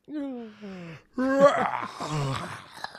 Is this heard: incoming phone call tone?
no